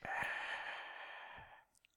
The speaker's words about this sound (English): Oh, he's cooing. Aww. He's not cooing. He's breathing deeply. He's thinking big thoughts right now. You know, I'd almost say he was wheezing.